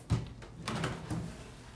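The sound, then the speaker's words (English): The small wooden case door of a John Whitehead clock is opened: a soft knock, then a brief creaking, rattling swing of the hinge, with no one speaking. “Let's open the door.”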